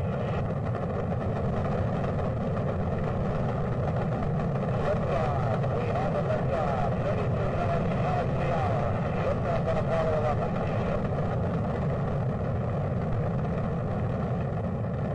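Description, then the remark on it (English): A deep, continuous rocket-engine roar fills the whole stretch, loud and steady with a rumbling, crackling texture and no pauses or breaks. “2, 1, 0, all engines running.”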